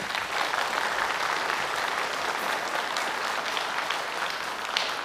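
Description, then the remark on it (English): Steady, sustained applause from a church audience after a prayer, a dense wash of clapping that holds an even loudness for the full five seconds with no voices rising above it. “Can we give Hal a round of applause?”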